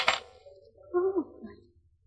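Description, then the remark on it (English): Coins of change are handed over after paying for a beer in a bar: a quick bright jingle, sharp and metallic at the start, then fading as a brief low vocal murmur follows. “Here, buy yourself some perfume with a change.”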